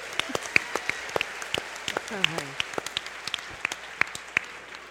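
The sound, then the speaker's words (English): An audience applauds a mortgage broker with a steady patter of many sharp claps for about five seconds, and a brief voice rises over the clapping midway through. “Big round of applause”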